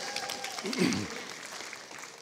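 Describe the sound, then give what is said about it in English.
An audience at a church sermon breaks into clapping and cheering as the preacher invites them to, a dense wash of applause with a brief vocal swell of whoops near the start, sustained and moderately loud for a couple of seconds. “And everybody should hoop and holler and clap right there.”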